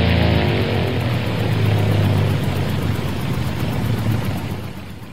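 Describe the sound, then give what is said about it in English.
A loud aircraft engine roars steadily with a low droning hum, then eases off slightly near the end as it sputters and cuts out. “Holy smokes, the engine just cut out.”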